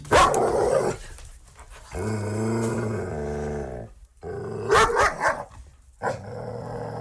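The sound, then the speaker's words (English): A dog growls low and steadily in drawn-out rumbles, broken by short sharp barks and bursts of panting breaths. No one speaks. “That was an actual dog.”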